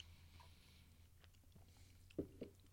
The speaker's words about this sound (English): I think, let me take this sip.